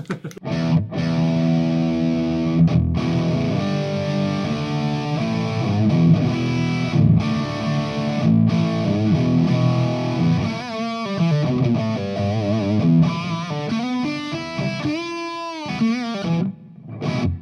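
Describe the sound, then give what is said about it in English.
An electric guitar played through an overdrive pedal, gritty sustained chords and riffs with a thick, saturated tone, ending in a few bending, wavering notes before a final strum. “It's not my favorite pedal, but it sounds a lot better than some others.”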